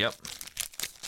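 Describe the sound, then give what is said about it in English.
Crinkly chocolate bar wrapper noises, a few quick crackling bursts of the loose plastic wrapping being handled, heard under a brief spoken affirmation. “There seems to be a little bit of slackage to that wrapping.”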